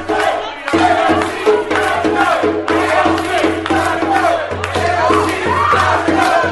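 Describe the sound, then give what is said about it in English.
A large crowd of a politician's own supporters, calling her out, shouts and screams continuously, voices rising and falling together in a loud, rhythmic chant over a steady low hum, with no break in the noise. “You can just hear all the screaming.”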